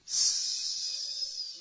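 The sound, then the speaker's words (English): A single long, sharp hiss made through the teeth to call people or stop a taxi, starting abruptly and holding steady and bright for well over a second, with no talking. “Is that not how you stop a taxi? Is that not how you call people?”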